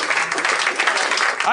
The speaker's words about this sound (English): I think the audience is a little too assertive with their end of the segment applause. I think you've gotten a little too big for your clapping britches.